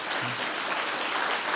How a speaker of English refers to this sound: Yeah, you can go ahead and clap for that.